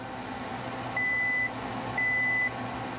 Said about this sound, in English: The beeping means an electric current is going to pass through the fuse wire and explode my snack. You might expect blowing up an almond to make a big bang noise or something. But it actually doesn't.